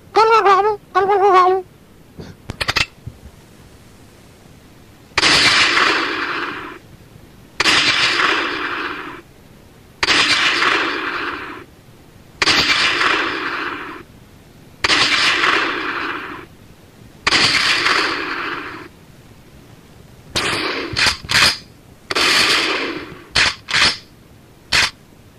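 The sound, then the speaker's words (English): A bird call opens, then six loud, evenly spaced gunshots boom out as hunters shoot at a turkey, each trailing off in an echo, followed by a quicker flurry of shots near the end. “Oh, gracious, we missed every time. That turkey's giving us the finger. That little bastard. I'm out of bullets.”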